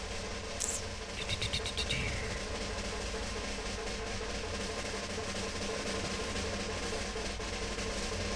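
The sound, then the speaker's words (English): A steady, dense rumble of cars fills the whole recording, with a few brief high squeaks and rattles near the start before the continuous engine and road noise settles in. “Okay, the cars.”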